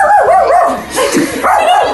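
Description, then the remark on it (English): A household pet dog barks several times in quick succession, loud, its voice rising into high, yippy, whining tones between barks, with no one speaking. “That would be our dog.”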